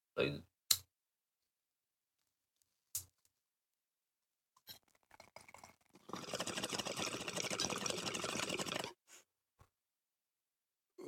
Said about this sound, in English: I got a note that my bong sound is going to change very shortly. Because I'm getting a bigger beast of a bong for all you fine folks to hear better at home.